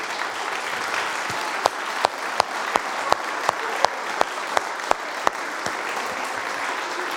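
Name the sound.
audience applause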